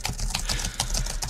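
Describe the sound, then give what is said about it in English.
Rapid clicking of keys on a computer keyboard as someone types an email, a steady flurry of keystrokes with no voices over it. “Use that keyboard. Yeah, that's going to be really, really good sound.”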